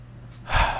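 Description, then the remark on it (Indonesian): A single audible breath drawn in sharply after a brief quiet moment, airy and rushing, with no voices present. “Ini aku bernafas.”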